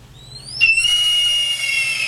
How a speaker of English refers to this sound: That is a hawk, Sean. That is a red-tailed hawk.